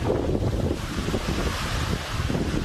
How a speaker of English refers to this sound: Yes, you felt it. We know you did. It is windy out there.